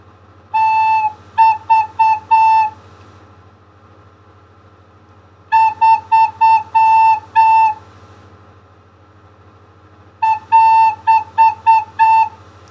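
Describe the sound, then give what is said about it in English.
A recorder plays the note A, fingered with the second finger on the second hole, in three bursts of short rhythmic echo patterns during a third-grade recorder lesson. Each group of several clipped toots is separated by a few seconds of quiet hum. “Let's play some patterns on A with echoes.”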